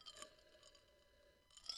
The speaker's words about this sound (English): It's hard not to chew this ice, dude. It's real hard.